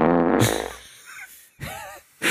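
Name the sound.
imitated fart noise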